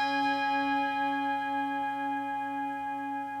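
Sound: bell ringing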